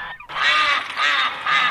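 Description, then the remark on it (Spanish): A duck quacks loudly in three drawn-out, nasal, buzzy calls, one after another with brief gaps, heard alone with no talking. “El patito nos cuenta que tan siniestro gato destruyó su granja buscando a un humano y un felino que portan discos de 78 RPMs.”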